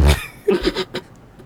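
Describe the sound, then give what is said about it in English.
Two farts in quick succession: a loud, low rumbling burst first, then a shorter, buzzier, slightly pitched one, followed by a brief soft sound. “Damn, two farts.”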